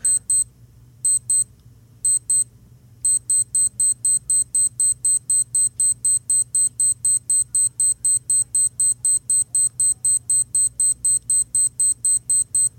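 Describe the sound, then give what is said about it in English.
A traditional digital alarm clock sound ('Alarm sound 4' setting) beeps in sharp, high-pitched bursts, first in short clusters with gaps, then a rapid, steady pulsing that continues loudly to the end over a low background hum. “Okay, and to me, that's your traditional digital alarm clock sound.”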